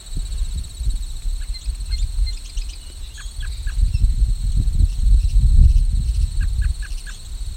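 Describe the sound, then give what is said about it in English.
A katydid calls with a steady, high-pitched buzzing drone throughout, while scattered bird chirps and tweets sound over a low outdoor rumble of wind, at the entrance to Vine Mount Swamp. “It's a katydid calling too.”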